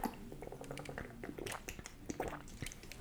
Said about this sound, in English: I'm gonna take a drink of water. I'm thirsty. Hold on.